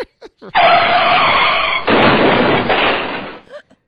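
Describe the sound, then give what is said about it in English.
A loud car skidding sound effect: a harsh, noisy screech lasting about three seconds, surging again midway before cutting off, with no talking over it. “I think we need a car sound effect here.”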